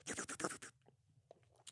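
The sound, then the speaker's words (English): A breathy slurp from a glass of LaMarco Prosecco sparkling wine lasts under a second, followed by faint swallowing clicks and a soft tap of the glass. “I'm going to take a sip of mine.”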